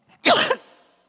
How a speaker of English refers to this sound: I'm very sorry about my cough here.